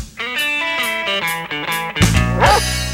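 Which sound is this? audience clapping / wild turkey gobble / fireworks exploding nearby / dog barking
dog barking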